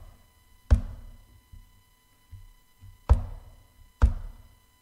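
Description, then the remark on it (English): Three heavy, deliberate knocks on a door, spaced slowly and unevenly, each one sharp and resonant with a short echoing decay. Faint soft thumps sit between them, and no one speaks. “So the one who is the King of Kings, the one who at the beginning is the Amen, the final word, he's now, picture this, at the side of the house on a door, maybe like a traveler with a cloak and a staff going.”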